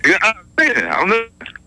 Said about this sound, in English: Oh, man, his phone's all messed up.